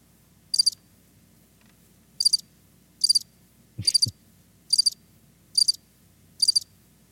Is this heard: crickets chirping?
yes